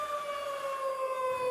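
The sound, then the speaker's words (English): A tornado warning civil defense siren in Tulsa, Oklahoma, played every Wednesday at noon, holds a steady, sustained wail whose pitch sags slightly over the short stretch, with no voices present. “And every Wednesday at noon, they play this siren.”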